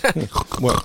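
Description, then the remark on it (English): A person imitates a pig, producing a quick run of four or so nasal, grunting oinks, fairly loud, with no other sounds around them. “Make pig noises.”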